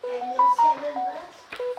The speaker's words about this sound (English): Is this your phone? Yeah. I think, is it your phone making the noises?